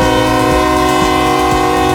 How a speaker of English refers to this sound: You hear it, the train just blaring its horn. Trying to get you off the tracks.